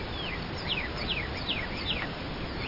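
Wild birds calling outdoors at Joshua Creek Ranch, recorded from a hunting blind: a series of quick, descending chirps repeats at a steady pace over a constant hiss of wind and open-air background noise.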